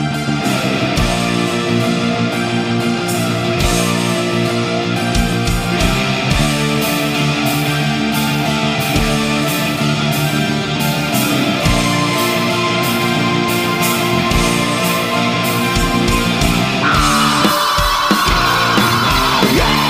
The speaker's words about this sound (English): Fire up … with their song, ….